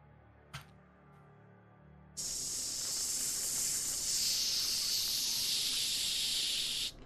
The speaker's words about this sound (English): You hear a strange hissing sound. An extra noise coming from the HVAC units you are directly next to.